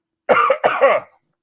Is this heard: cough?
yes